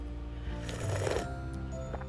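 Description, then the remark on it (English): A single drawn-out slurp of coffee, a wet, airy sucking noise swelling for about half a second before fading, with no talking around it. “Every time I slurp, I think of my little sister.”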